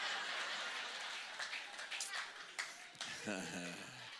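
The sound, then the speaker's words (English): Audience members aged 60 and up clap in a dense, scattered patter for a few seconds, fairly steady and moderately loud, before a man's voice begins speaking over the fading applause. “All right, I get some claps from the 60s and up.”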